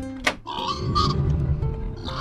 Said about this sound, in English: Oh, my goodness! The pigs, they've gotten loose!